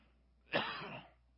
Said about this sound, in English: Y'all gonna make me cough.